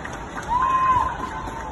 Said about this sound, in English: Through cheers and claps in solidarity, it's all of you at home, safe and sound, to remind each other that we're all in this together.